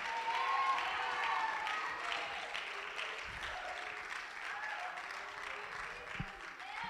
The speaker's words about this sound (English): Come on, we're going to do it. We're going to do it. We're the body of Christ. We're going to clap. We're going to shout.